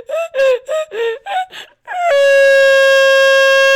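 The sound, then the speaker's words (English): A voice imitates a toddler's version of a donkey's bray, a loud string of six short, choppy honking bursts followed by one long, steady held note. “Before she releases his toddler's version of a bray.”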